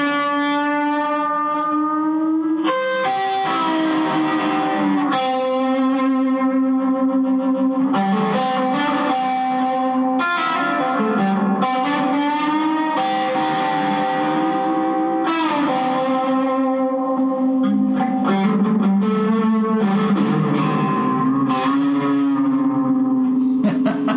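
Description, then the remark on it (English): Guitar played through a reverb effect with a boost engaged, washed in heavy reverb and echo, plays sustained, swirling notes that smear into each other, creating a loud, continuous psychedelic drone with shifting pitches and no voices. “This is total psychedelic.”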